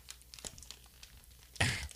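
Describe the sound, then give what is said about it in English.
Crinkly rustling of a plastic bag of Canadian wild onion and yogurt chips, with French writing on it, being tugged and pulled as someone struggles to open it, with scattered small crackles and one louder burst of crinkling tearing near the end. “Holy shit, I can't open the bag.”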